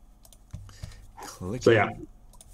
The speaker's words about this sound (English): Clicking of the pauses.